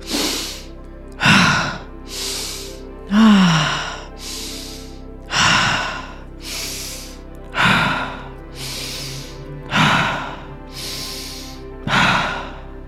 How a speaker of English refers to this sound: Keep the breathing circulating. Keep it going. That's it.